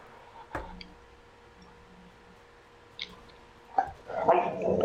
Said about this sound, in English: if you bark again, I will kill you. Quiet, quiet, quiet.